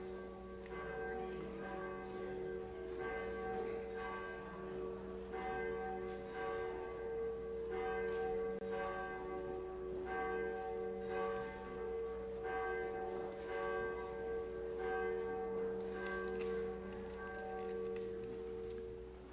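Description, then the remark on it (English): A church bell at Trinity rings steadily during Christmas week for the whole stretch, its long ringing tones overlapping in a sustained, resonant wash at moderate volume with no voices over it. “There's the bell. Okay, we're ready to go. We'll wait for that to finish.”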